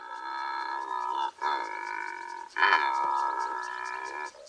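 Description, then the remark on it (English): A Secretarybird, a bird of prey, gives a long, raspy, croaking call, a steady buzzy drone with a pulsing grain, broken by two brief pauses and rising slightly louder after the second. “Meet the Secretarybird, a bird of prey like no other on Earth.”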